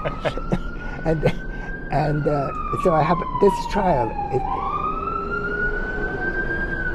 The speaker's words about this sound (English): What are you going to do about sirens?